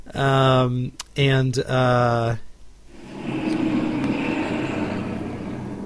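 A few loud, steady tonal blasts give way to the broad, rumbling roar of a truck driving past outside, holding steady for several seconds.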